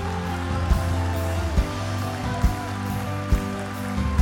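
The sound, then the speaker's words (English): A large church audience claps continuously in a dense, steady wash of applause, with music playing underneath and a low thump pulsing roughly once a second. “Come on, church, clap just a little bit longer.”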